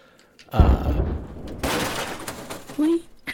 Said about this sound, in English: So as you guys get back to your car, you hear an explosion come from the house.